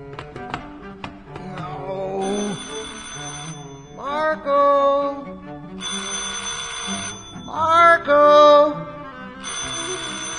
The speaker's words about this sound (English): Where is that phone?